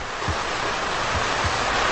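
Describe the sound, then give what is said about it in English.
Fire hoses, all coupled up and opened to full blast, flood a target with water from all angles in a steady, loud roaring rush, a continuous hiss that holds constant for the whole moment with no voices and no pauses. “All the hoses coupled up. We'll flood that thing with water from all angles.”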